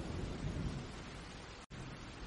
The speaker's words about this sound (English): And in the background, we have a light thunderstorm.